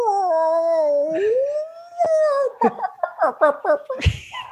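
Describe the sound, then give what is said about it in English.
A man's voice does a long, wavering whale-call impression, sliding up and down in pitch, then breaks into a quick series of short, rhythmic hooting yelps, loud and close. “feel free to insert your whale impersonation now.”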